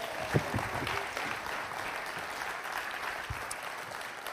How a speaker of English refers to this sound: And as I say amen, people will say, we love you, Ron, by clapping.